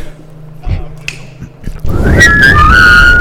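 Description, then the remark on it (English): A person whistles a short, wavering melody after about two seconds of quieter background noise, the tone sliding up and down over a fuller, noisy backdrop. “You gotta learn how to whistle.”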